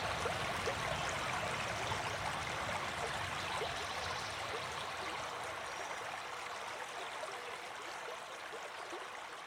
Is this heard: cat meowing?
no